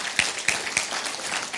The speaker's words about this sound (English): I think that's something we ought to give the Lord a round of applause for today. Come on, right?